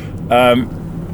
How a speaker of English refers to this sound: I'm still stuck in terrible traffic, by the way. If once I get past this traffic, it's going to get a lot louder, the background noise, so I should probably hurry up.